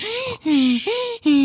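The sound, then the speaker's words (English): A voice imitates rapid hyperventilating breaths, four quick voiced gasps alternating in pitch, fairly loud, in an even panting rhythm with brief gaps between them. “I just realized the one I was making was hyperventilating.”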